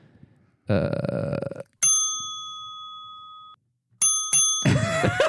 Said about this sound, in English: So the seatbelt sign, That's the airline beeping. Yeah. I've been wanting that one for a long time.